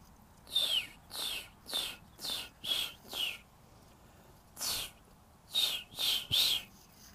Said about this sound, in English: Listen to the bird. Listen to the bird. Listen to the bird. You're gonna hear a little bit.